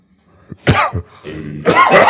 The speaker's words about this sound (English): Oh, you got a cough right in the thing. You're like, hey, you're blowing everything out.